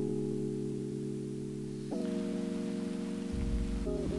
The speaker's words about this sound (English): Just feel a little rain.